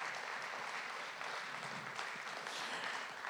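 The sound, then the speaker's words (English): A church audience claps steadily for guests as they come up, a dense wash of many hands with no pauses and little change in loudness, sustained throughout. “Can we give them a round of applause as they come up, please?”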